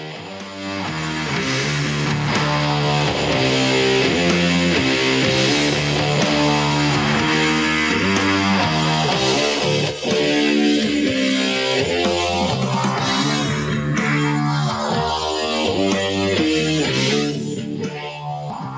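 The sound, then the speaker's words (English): A heavy stoner rock song with thick, distorted guitars grinding through a repeating riff at a moderate, head-nodding pace, loud and steady throughout, with no voices. “That reminds me of, that's like classic stoner, heavy distortion, totally banging your head, not too fast banging your head, just kind of, it's definitely banging, but...”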